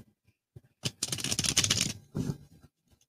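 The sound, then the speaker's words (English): A deck of playing cards is shuffled: a dense, crisp riffling burst lasting about a second, followed by a shorter second riffle and a few faint taps, with no talking. “All right, here, let me make sure and get a good shuffle here.”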